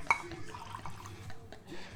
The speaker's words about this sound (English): Bro, why my shot keep looking small? It looks like somebody keep drinking out of it every time I pour it.